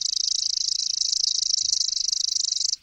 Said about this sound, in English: I dialed up the pre-programmed call on my iPod, broadcast the song through an external speaker, and bada bing, there it was, a male chipping sparrow, hormones pumping, singing madly from the branch in front of me.